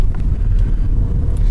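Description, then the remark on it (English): Inside a Nissan Leaf electric car rolling along at 15 miles per hour down a little back street over speed bumps: a steady low rumble of road and tyre noise with a faint airy hiss, no engine note, and no one talking. “The loudest thing in this car was the indicator ticking away then, purring along at 15 miles per hour, down a little back street over speed bumps.”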